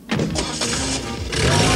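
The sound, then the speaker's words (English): A single-cab truck's engine cranks and catches with a loud, rough burst, then revs up into a steady, noisy roar as the truck drives off down the road, with no voices. “They all climb into Firecracker's single cab, with T-Bob asking what he should do.”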